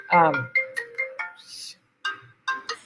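A phone's melodic ringtone plays in a quick series of bright electronic tones with brief pauses between bursts, clear, with no talking over it.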